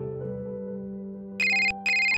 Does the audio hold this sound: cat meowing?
no